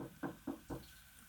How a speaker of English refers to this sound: Yeah, there's a knock at your door.